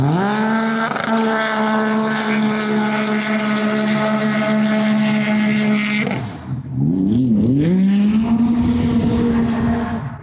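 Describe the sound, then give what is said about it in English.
A jet ski engine racing on water screams at high revs in a steady, loud whine, briefly throttles down with a wobbling pitch, then roars back up to full speed. “Well, a jet ski gets about 3 miles per gallon in fuel efficiency and is as loud as a 737 jet.”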